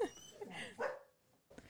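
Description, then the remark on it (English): A dog named Copper barks a couple of times, a drawn-out yelping bark followed after a short pause by a brief one, fairly quiet, with no talking over it. “That's Brandon's dog”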